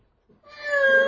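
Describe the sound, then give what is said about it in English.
A voice imitates the noise a whale makes when it wees: one drawn-out, high, wavering cry with rich overtones that swells up after a short breathy onset and holds loud, with no other sounds. “They make that noise when they wee though, don't they?”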